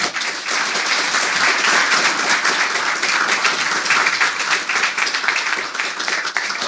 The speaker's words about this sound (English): Let's give another big round of applause for all our readers.